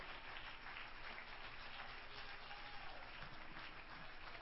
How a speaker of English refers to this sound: Come on, clap your hands if you believe it this morning.